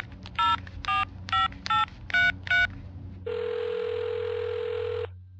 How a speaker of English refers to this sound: I finally found the monstrosity on her nightstand and quickly dialed her cell.